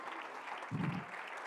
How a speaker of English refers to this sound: Well, come on, somebody clap your hands unto the Lord and worship him.